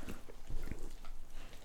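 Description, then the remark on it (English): A dog grunts indoors, giving a few short, low, snorting bursts in quick succession over a steady background of room noise. “Oh my God, the dog's in.”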